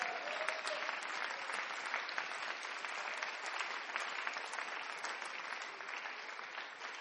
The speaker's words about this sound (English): I'm just waiting for the expectant happy clap.